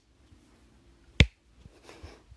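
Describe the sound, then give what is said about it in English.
One sharp clap rings out against a quiet background, followed by a faint rustle; no other claps follow within the short stretch. It is the helper monkey slow clapping. “And cut to Chopper, and the helper monkey was slow clapping.”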